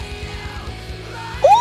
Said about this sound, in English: I don't feel that those guttural screams honor our God. I think they do.